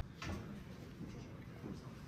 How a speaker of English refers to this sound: Hey, close that door!